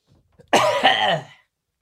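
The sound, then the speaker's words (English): A single loud, raspy throat clearing, a harsh rumbling burst lasting under a second before silence returns. “I got to clear my throat.”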